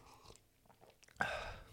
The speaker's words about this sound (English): But yeah, well, let me have a sip of this before we get into it.